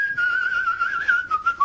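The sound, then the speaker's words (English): A man whistles a short, old-fashioned melody in a 1950s style, one clear sustained tone gliding gently up and down in pitch, steady in loudness with no talking. “He just sits there enjoying his animal collection and whistling. In a kind of 1950s sort of way.”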